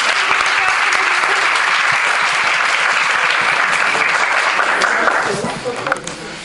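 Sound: audience clapping hands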